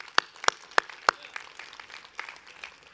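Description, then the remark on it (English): Four sharp, evenly spaced claps ring out, followed by a softer scattering of clapping that continues at a lower level, as an audience applauds the people who serve. “But the clap and the applause is not the only gift you'll get.”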